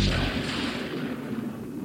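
A deep, rolling rumble of thunder from a passing storm fills the whole moment, loud and continuous with a heavy low-end roar that stays steady and never breaks into separate cracks.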